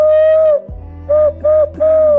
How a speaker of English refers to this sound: I mean, I think This one isn't, it's like, it's not weird. It's just not a lot of people can do it. I can like whistle with my hands. Hold up.